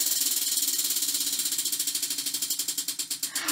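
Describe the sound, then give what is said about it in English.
A prize wheel spins with a rapid, steady run of sharp clicks from its pawl, the ticks gradually spacing out and slowing as the wheel winds down. No voices. “Let's spin the wheel.”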